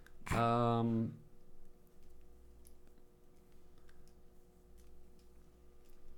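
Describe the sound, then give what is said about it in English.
A clock ticks steadily and faintly in the background for several seconds, following a brief loud voiced sound at the very start. “We can put a clock up on the wall, speed it up a little bit.”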